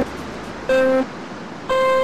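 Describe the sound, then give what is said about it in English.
Steady, strong wind rushes through a racing game on a track at Santa Catarina, Brazil, in very windy weather, a broad continuous roar filling the background, while two loud electronic beeps cut in, one short and one held at the end. “Weather is very windy. Yep, you can hear the wind.”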